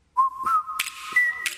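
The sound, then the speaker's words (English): A clear whistled melody of an old TV series theme tune, a sustained tone that holds then steps up to a higher note, with a couple of sharp breathy bursts between phrases; no one talks. “Y'all recognize that like one, two whistles in.”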